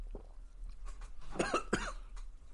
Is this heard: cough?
yes